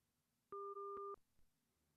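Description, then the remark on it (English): A steady electronic telephone tone sounds once for just over half a second as a phone call drops, then the line falls nearly silent. No one speaks. “I don't know what happened to that phone call.”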